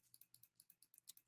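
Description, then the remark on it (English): A rapid run of about ten light, crisp clicks in quick succession, soft, with no voices. “Are you clicking against me?”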